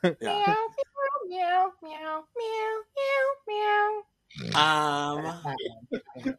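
A cat piano sound effect plays a short melody with meow-like tones: six evenly spaced notes rising and falling, then a longer, louder wavering note, clear with no talking over it.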